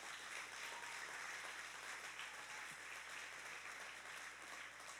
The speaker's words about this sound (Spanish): Diga aleluya. Dar un aplauso a Jesús.